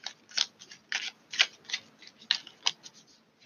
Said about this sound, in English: All right. Shuffling for a few more cards.